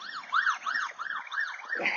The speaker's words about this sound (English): oh, here we got a fire truck now, another one.